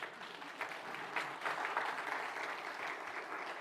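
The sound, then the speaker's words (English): An audience at a church service claps steadily throughout after a prayer, celebrating a family's birthday and new child, a dense, sustained patter of many hands at moderate loudness with no speech over it. “You can clap. Go ahead.”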